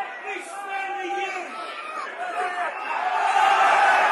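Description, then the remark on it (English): A football crowd jeers a player, number 7, a dense mass of shouting voices close by that holds steady and swells louder toward the end. “Right down in front of us, he's drawing some comment.”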